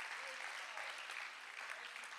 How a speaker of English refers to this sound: Oh, why don't you clap your hands and thank the Lord for mercy this morning.